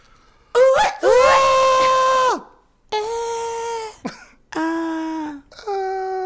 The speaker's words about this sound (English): Scream if you're in the car right now. Scream wherever you're at. Yes. Scream. If you're at work, scream at your boss. Let it out. Let's pause. Ready? Pause and yell.